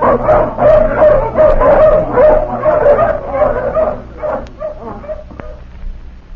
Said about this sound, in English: All right, let the hounds off the leash.